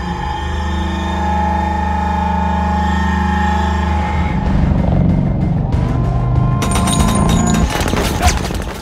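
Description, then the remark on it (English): Sound effect for the Raven, a military spaceship Kruger comes down in, made with a vibrator shoved into a Dobro guitar: a steady, buzzing metallic drone with layered harmonic tones that breaks into a loud, rattling, turbulent roar with sharp crackling bursts. “One of the most fun sounds was actually the sound of the Raven, which was one of the spaceships that Kruger comes down in, and it was sort of a military vehicle.”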